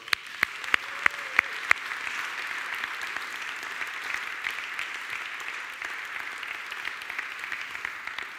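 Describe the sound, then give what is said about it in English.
A crowd applauds steadily in a dense, crackling wash of claps, opened by a few sharp louder claps and a brief whistle-like tone, then continuing evenly without voices. The applause thanks the people who provided the food. “Should we start giving people a round of applause?”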